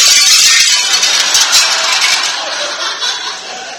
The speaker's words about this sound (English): This football, which has just come crashing through the $5,000 President McKinley French windows